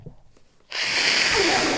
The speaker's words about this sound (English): You just put your mic closer to you so they could hear you blowing your nose.